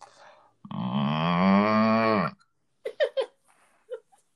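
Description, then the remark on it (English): A person imitates a cow with one long, loud, drawn-out moo lasting nearly two seconds, followed by a few short bursts of laughter. “What about like a cow?”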